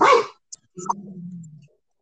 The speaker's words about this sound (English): Shut up, dog!